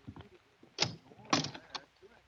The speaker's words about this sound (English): There's a mirror on the door of that closet to your right. Open it and see how you've improved.